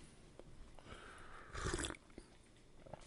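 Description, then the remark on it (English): A single short slurp of hot coffee from a third pot, fairly soft, lasting under half a second against a quiet background with faint mouth noises around it and no talking. “I know you can hear the slurp.”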